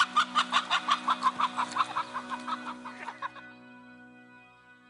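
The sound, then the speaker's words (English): A chicken clucks in a rapid run of short pulses for about three seconds, moderately loud, while a person plays with it, then trails off into a low steady background hum. “They didn't catch the chicken. He was just playing with it.”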